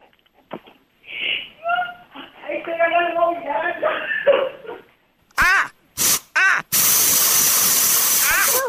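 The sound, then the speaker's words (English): An aerosol can of Doom insecticide sprays up at something to kill it: three short hissing bursts, then one long steady blast running to the end. Someone talks and makes voiced sounds beforehand. “Do you think if I just spray some doom up there, it'll kill it?”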